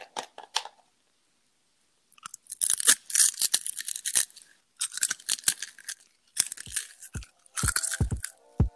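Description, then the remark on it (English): A loud crunch as someone bites into a crunchy piece of crisp food, followed by several bursts of crackly chewing with short pauses between them, with no talking. “Let me get a good crunchy piece.”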